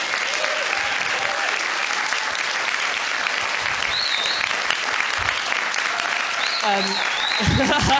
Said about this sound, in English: Big round of applause for all storytellers.